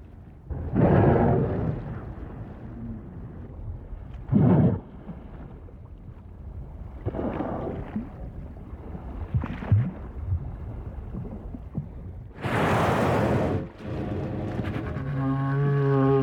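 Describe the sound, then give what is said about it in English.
Right whales snoring, recorded by Roger Payne: low, breathy rumbles and gusty exhalations repeat irregularly over a murky underwater drone, with one loud hissing blow and a long tonal moan near the end. “We leave you this week in the company of right whales, snoring.”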